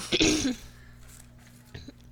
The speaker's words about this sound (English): Sorry, clear my throat.